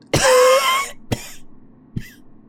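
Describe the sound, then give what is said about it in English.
A man's harsh, raspy cough, as he coughs up black, ash-like matter: one long hacking burst, then a shorter cough and a faint third, each separated by brief pauses, with no talking. “He's been coughing up black, almost like there's literal ash in his lung.”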